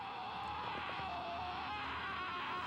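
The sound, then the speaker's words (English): A woman's high, piercing scream from a horror film, held at full strength without a break, steady and unwavering from start to finish, with no talking over it. “This is the longest scream in motion picture history, folks.”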